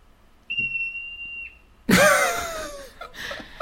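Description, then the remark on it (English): A marmot's high-pitched call: a steady, piercing whistle-like tone for about a second, then a sudden loud, harsh scream that slides downward in pitch and fades out. “Wow, that was a very high-pitched scream.”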